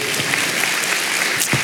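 An audience applauds with dense, steady hand clapping, a continuous crackling wash of many hands at an even loudness throughout, with no voices heard.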